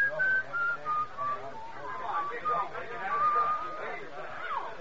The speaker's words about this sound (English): I get up and I'm making for the door when I hear it. And then I remember I'd been hearing that whistling right along and didn't notice it.